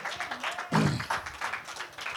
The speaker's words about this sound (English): Can y'all give the Lord a hand clap for just a couple seconds? Come on. Praise God. Amen.